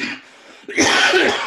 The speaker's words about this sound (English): Pardon me. When I laugh spontaneously, sometimes I cough.